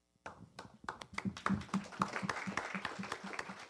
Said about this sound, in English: Thank you. Let's keep clapping for our panel. Thank you all so much.